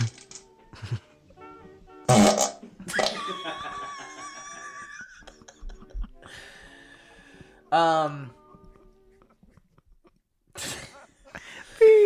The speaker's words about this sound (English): Why is it so loud? Why is it bad? What is this? Is this... He sent that to us? No, this is just that I found bowl farts on YouTube.